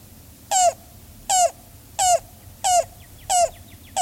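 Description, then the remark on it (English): A cuckoo calls five times in a steady, evenly spaced series, each short note bright and slightly falling in pitch, sounding alone over a faint background hush. “His note or call is as of one of lost or wandering, and to the farmer is prophetic of rain.”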